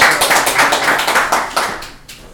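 A short burst of applause from a small group for a participant called up to the front, dense overlapping claps at a fairly steady loudness that thins out and fades near the end, with no talking over it.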